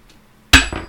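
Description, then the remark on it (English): A flipped coin lands tails on a hard surface with a sharp metallic clack, a bright ringing tone, and a quick second rattle as it settles. The clack is loud and preceded by near silence. “will you flip that coin for me, please?”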